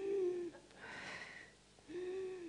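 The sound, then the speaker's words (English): Shaky, ragged breathing: a wheezy, whimpering inhale, a breathy rush of air, then another voiced wheeze, as someone struggles to stop crying while being coached to take three deep breaths. “Okay, breathe. Okay, three deep breaths. Okay, you're not breathing with me.”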